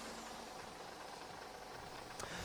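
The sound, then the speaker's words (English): A bus engine idles with a steady, low rumble and broad hiss, unchanging, with a brief sharp click near the end. “You got coins for the bus?”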